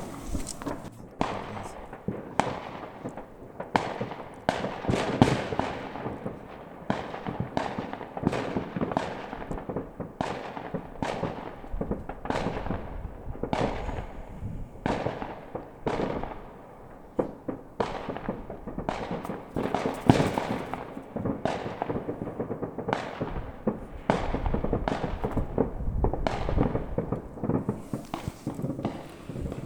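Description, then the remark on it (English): A rapid, continuous barrage of fireworks bursts outside, recorded on a phone held out of a window, with sharp cracks and pops overlapping one after another at a steady, loud pace, a rumbling background and no clear talking. “I'm going to stick the phone out the window, which is a bit unusual. Hope I don't drop it, so that you can hear some fireworks.”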